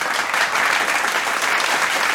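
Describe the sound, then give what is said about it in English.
A crowd applauds steadily, a dense, even wash of clapping that stays loud and unbroken for the whole stretch, with no voices standing out. “Give me an extra special applause for that.”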